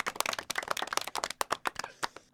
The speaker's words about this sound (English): Almost sounds like somebody laughs at the end of our clap clip. It's kind of funny.